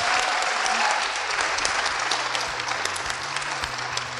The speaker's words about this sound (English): Our guests, thank you. We'll all clap for them now, the panel.